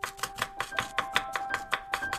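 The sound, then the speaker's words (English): Quick, evenly spaced chopping taps, like the side of a hand striking a tabletop, as someone pretends to chop vegetables with the side of the hand, about a dozen in a steady rhythm, with faint sustained tones humming underneath. “So let's practice chopping with the side of our hand on the count of three.”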